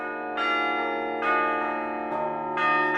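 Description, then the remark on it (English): Carillon bells played by a lone ringer high above a city ring out in a steady sequence of four strikes, each bright onset blooming into a rich, lingering hum of overlapping tones, fairly loud with no voices. “what do you feel when you're in here playing the bells?”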